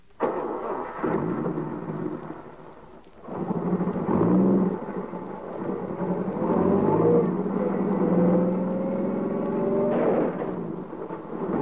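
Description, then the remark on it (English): A car engine revs and whines as it backs up on a road, its pitch climbing steadily over a continuous rumbling, rain-like wash of noise, fairly loud, with no voices. “Back up over him. You've got to.”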